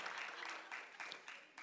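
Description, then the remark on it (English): An audience claps together, a dense, steady patter of many hands with a few sharper slaps standing out, fairly soft and continuing without pause for under two seconds. “You don't even know whether you can clap or not.”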